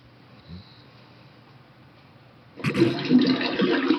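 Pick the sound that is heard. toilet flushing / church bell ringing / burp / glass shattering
toilet flushing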